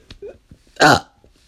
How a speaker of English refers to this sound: Wow, that is a lot of gas that is inside of me. So you guys, hopefully I don't have another burp like that, because at this point in time, I really hate to have to re-record this whole shit and figure out what is wrong with me.